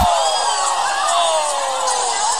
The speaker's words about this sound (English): She was in massive heels, strutting, doing her thing, and then just kind of ate it. She fell over and stacked it, and this was the crowd's reaction.